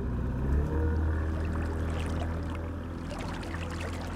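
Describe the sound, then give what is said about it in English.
A boat motor drones steadily on Lake Oconee in Putnam County, Georgia, a low rumbling hum over lapping water, with faint splashes and hiss rising toward the end. No one speaks. “The only other way in the community, by boat.”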